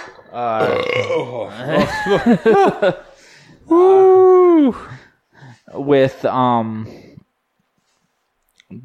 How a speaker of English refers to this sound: I'm getting the hiccups.